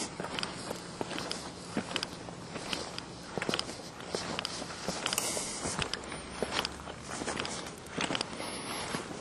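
Shoes strike the ground in a steady walking rhythm on a night walk, a long run of crisp, slapping footsteps at a moderate pace over a constant background hiss, with no voices.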